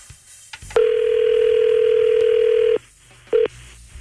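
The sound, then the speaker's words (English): A telephone line tone as a call is placed to a contest winner: a short click, then a long steady electronic ring lasting about two seconds, a pause, and the start of a second ring. No voices. “So today, the draw was made, and now we phone our winner.”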